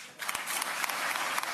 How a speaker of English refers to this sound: One of many big applause lines for DeSantis.